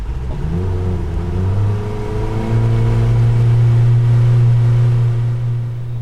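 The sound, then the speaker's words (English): A motorboat engine roars loudly and steadily as the boat speeds across a reservoir toward a patch of invasive alligator weed, its low drone climbing in pitch early on before settling into a constant throttle. No one speaks. “While Brandon Jones pilots us across the water”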